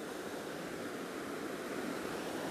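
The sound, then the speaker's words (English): Steady outdoor river ambience at McIver River: continuous rushing water blended with a soft wind hiss, even and unbroken throughout, moderately loud, with no voices. “I'm at McIver River right now.”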